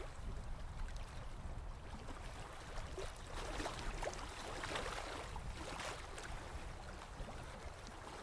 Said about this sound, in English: And as you allow the sound of the waves to relax you, you continue to look out over the water as you relax on the beach.